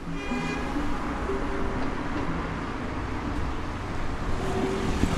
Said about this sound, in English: By Sunday evening, the traffic's back. It's quieter, but there are people out on the streets.